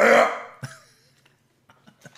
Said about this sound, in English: Throat's starting to hurt. I do. Okay, good. Yeah. Hold on. Let me just clear my throat.